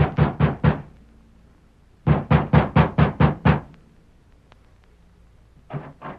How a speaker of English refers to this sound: Our story continues several weeks later. Sheriff Ramsey has just dismounted before the ranch house of Alva Carlson and is knocking at the door.